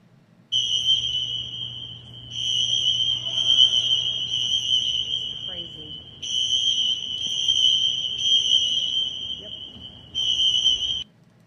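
A shrill electronic fire alarm, which had been pulled, blares indoors in a building in long, steady high-pitched blasts separated by brief pauses, with faint background murmur beneath it; video of the alarm shared by Marjorie Taylor Greene.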